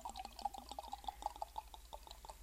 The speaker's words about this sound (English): And so with that being said, y'all can go ahead and start pouring. Yay! Wine. Woo. And wine o'clock. No more. So let's pour it.